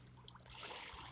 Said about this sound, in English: Perhaps you can hear the sounds of water. And those are small little waves from a beautiful body of water called Lago de Atitlan. Or for you gringos out there, Lake Atitlan.